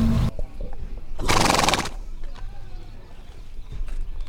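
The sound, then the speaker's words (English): A horse on a stage lets out one loud whinny lasting under a second, set against a low rumbling background with a few faint knocks that could be hooves on a hard floor. “You'd think having horses on stage would be distracting, or at least challenging.”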